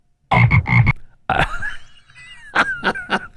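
A toad croaks, loud and alone: three quick rasping croaks, a pause, a drawn-out warbling trill, then three more short croaks in a rough rhythm.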